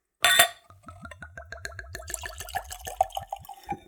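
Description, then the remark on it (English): Liquor poured from a bottle into a clean Glencairn whiskey nosing glass, opening with a bright splash and then a quick, steady run of rhythmic glugging gurgles that rise slightly in pitch before stopping. “Nice little glug glug sound there.”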